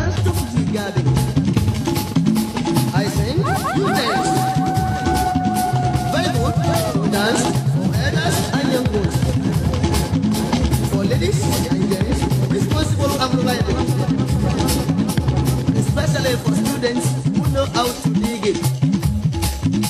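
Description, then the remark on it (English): Music plays loudly and continuously for the whole stretch, a dense, layered mix with a sustained melodic line standing out near the beginning and no pauses. “Let's play some music immediately.”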